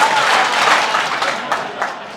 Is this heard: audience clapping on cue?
yes